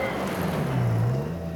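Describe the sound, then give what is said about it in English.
A truck speeds past outside a house, its loud, steady engine rumble dipping and rising in pitch as it goes, as the driver lays on the horn. There are no voices, only a continuous drone. “Just then, a truck sped past outside his house, and the driver laid on the horn.”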